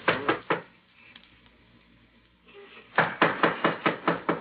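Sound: knocking on a door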